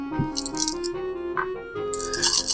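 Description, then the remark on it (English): Eight dice are rolled for a versus test in a tabletop game, clattering and rattling in bursts of bright, clicking noise over a steady humming tone, with a louder shake of rattling at the end. “Well, I'm already rolling 8 dice.”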